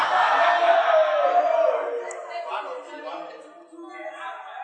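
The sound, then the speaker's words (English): A crowd of voices calls out together, loud at first and then fading into scattered murmurs and a few lingering shouts, like an audience responding. “No, the same people are shouting.”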